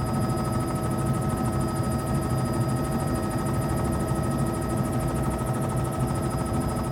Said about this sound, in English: The helicopter is a very different experience from the airboat. Both have their merits.